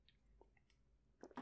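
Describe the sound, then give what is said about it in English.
A quiet sip from a beer can: faint wet mouth sounds, then a couple of short slurping bursts at the end, with no talking. “I caught you taking a sip of your beer again.”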